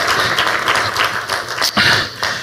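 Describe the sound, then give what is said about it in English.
A crowd claps steadily for a couple of seconds, a dense, crackling wash of many hands with a few sharper bursts standing out, and no voices. “I'll clap it up for them.”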